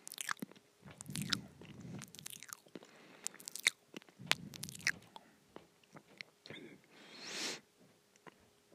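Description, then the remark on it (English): Chewing on a chicken nugget: wet, crunchy bites in repeated bursts with smacking clicks, fairly quiet, no talking, ending in a soft breathy rustle. “I'm now eating the chicken nugget.”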